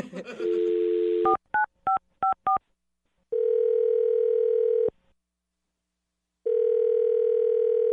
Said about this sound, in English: So I'm just going to dial the phone number and let you make your Awkward Tuesday phone call, okay?